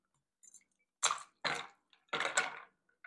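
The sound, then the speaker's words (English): A cocktail shaker full of ice is shaken in three quick bursts of clattering rattles, with small clinks between, as a cocktail is shaken and poured out with the ice; no one talking. “And then we'll just shake it. And then just pour it out with the ice.”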